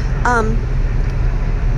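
A steady, loud low rumble of a car moving through heavy traffic on the way to work, heard from inside the vehicle, with a short tonal vocal sound near the start.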